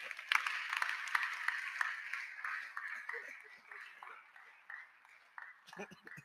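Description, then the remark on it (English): A crowd claps steadily for a man for several seconds, a dense patter of many hands that swells and thins unevenly, with some voices calling out underneath before it tapers off at the end. “clap for the man here.”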